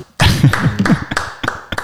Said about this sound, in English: Round of applause. That was amazing.